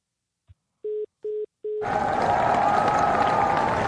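hand claps

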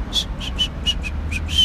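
person whistling

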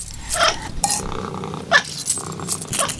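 cat purring

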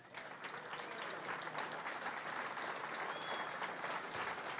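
audience clapping

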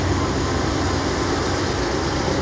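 train passing by

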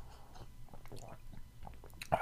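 person sipping coffee

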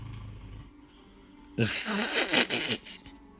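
snoring

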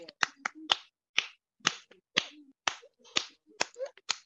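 rhythmic hand clapping

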